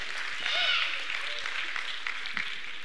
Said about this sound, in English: Now, yeah, you can clap for that.